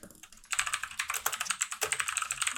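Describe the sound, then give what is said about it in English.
Rapid, continuous typing on a computer keyboard, with dense clicking keystrokes that start abruptly after a brief quiet moment and continue steadily, no voices present. “The end of this episode is us fucking clicking through.”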